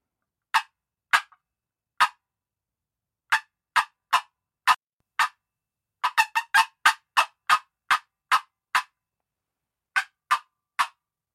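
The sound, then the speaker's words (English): Sharp, loud cutting played on a turkey call: irregular bursts of abrupt, high clucks, a few spaced notes, then a rapid, excited flurry, then more scattered clucks. No voices. “And then you got some cutting.”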